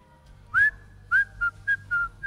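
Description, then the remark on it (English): A person whistles a short, upbeat famous sports theme tune of six clear notes, the first two longer with rising slides, the rest quick and clipped, fairly loud over a faint low background hum. “Something like a whistling tune”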